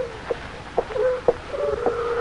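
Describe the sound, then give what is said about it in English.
A voice imitates a hoot owl with several low, hollow hoots spaced about half a second apart over a steady, faint background tone, fairly quiet and with no talking. “Come to think of it, I never heard anything sound so much like a hoot owl. A little too natural.”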